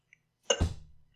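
A single gulp of water, a short wet swallow with a soft low thump that fades quickly, with no talking around it.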